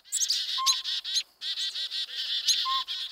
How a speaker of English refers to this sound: A pint-sized northern pygmy owl, not much bigger than a pine cone, hoots from a northwest treetop on a winter morning. Before long, this rufous brown diurnal owl, a determined predator of small birds and mammals, attracts a crowd.